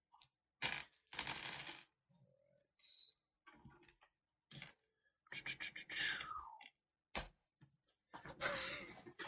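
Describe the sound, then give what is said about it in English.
Rummaging to pull out dice for a roll, with irregular bursts of clicking and rattling, like small dice clattering against each other and a container, scattered in short, uneven clusters with brief pauses between. “So give me 1 second to pull out my dice.”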